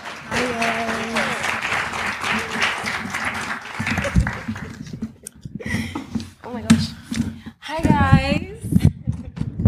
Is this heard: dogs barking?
no